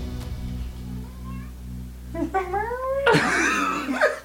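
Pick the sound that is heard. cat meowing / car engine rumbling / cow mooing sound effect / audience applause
cat meowing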